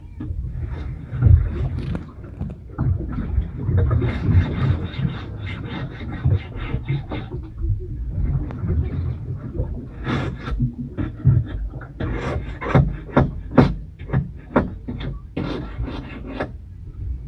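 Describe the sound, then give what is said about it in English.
Repeated rough scraping strokes as a man works in a boat's engine room, over a steady low mechanical rumble, coming in irregular bursts that turn sharper and more rhythmic toward the end. “But he was scraping away, too.”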